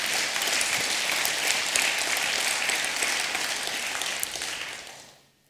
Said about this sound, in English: Isn't that amazing? That's worthy of a round of applause for the Lord. That's amazing.